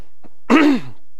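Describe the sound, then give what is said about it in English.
A single short throat clearing by a speaker with inflamed vocal cords, fairly loud, with a rough, voiced rasp that falls in pitch, preceded by a faint breath and followed by silence. “I have to clear my throat a lot.”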